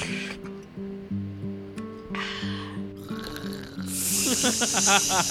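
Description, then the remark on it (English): A canned Negroni cocktail pops open with short bursts of hiss, then a longer, brighter fizz, all over steady background music. “Oh, you got a canned Negroni.”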